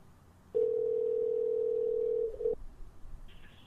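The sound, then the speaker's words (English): A steady telephone dial tone hums for about two seconds, clear, as a call is placed to Dan Carlin, then cuts off abruptly, followed by faint line noise and a brief higher-pitched electronic blip. “All right, let's get Dan Carlin on the phone.”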